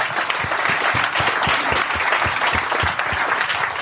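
crowd, audience applause

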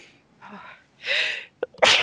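human body sound, sneeze

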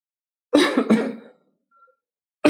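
human body sound, coughing

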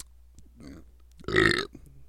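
human body sound, burp

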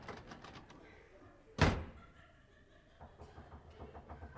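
household object, knocking on a door

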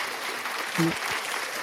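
sound effect, applause sound effect

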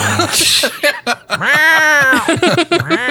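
animal, cat meowing

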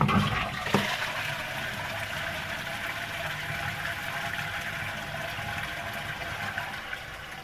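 household object, toilet flushing

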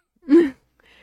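human body sound, coughing

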